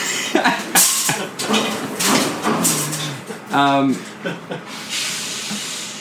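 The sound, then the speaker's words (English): A garbage truck passes with loud bursts of hissing air brakes and mechanical clatter, rising and falling over several seconds while people keep talking over the noise. “Oh yeah, when is the garbage truck coming?”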